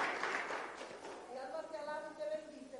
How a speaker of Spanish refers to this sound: Dele a Él ese aplauso, Padre, Hijo y Espíritu Santo, recíbelo.